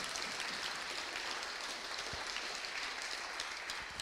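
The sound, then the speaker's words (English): An audience at a candidates' debate at Great St. Mary's claps steadily for several seconds for the moderator, a dense, even wash of applause with no pauses and no voices standing out above it. “I think he did a fantastic job, so a round of applause.”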